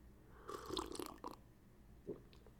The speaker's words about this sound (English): Yes, I deserve a sip of coffee. Yes, I do.